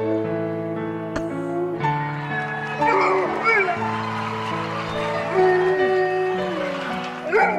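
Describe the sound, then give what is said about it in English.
Oscar, a dog on America's Got Talent, howls along with steady instrumental music, its long wavering cries sliding up and down to follow the melody, loud over the accompaniment. “It's so funny to me that that dog can actually howl in tune.”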